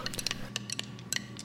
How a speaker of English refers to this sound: And I believe it's probably your turn to roll the dice. You're required to learn as you play. Roll. Okay, I'll roll them.